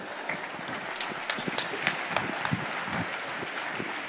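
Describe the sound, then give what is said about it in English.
An audience of marketers and business people applauds a speaker, steady applause filling the whole stretch, a dense patter of many hands clapping at an even, moderately loud level with scattered sharper claps standing out. “Let's clap it up for him.”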